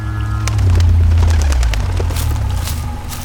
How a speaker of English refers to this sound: A low rumble came from under the waterfall. Was that her?